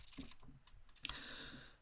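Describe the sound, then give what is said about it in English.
A few crisp key presses on a braille display keyboard while typing a test sentence, using dot 7 as backspace and dot 8 as enter for a new line. Fairly quiet, spaced irregularly with one sharper click near the middle and no talking. “And dot 8 is enter, and that takes a new line.”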